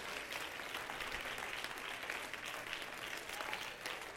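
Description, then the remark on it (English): An audience claps together in worship, rejoicing in the presence of the Lord, in a dense, steady burst of applause, with many overlapping hand claps sustained at an even, fairly loud level throughout, with no one speaking. “Would you clap your hands and rejoice in the presence of the Lord?”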